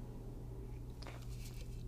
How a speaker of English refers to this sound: So, let me take a sip of my beer. Please hold.